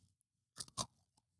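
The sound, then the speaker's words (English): Two sharp, crackly bites close to the microphone, one right after the other, followed by a faint trailing crunch; someone biting into a spicy crispy snack with little seaweed pieces, with no talking. “Do you guys hear this crunch?”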